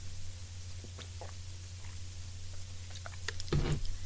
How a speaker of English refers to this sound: Pardon me, I need to take a quick sip.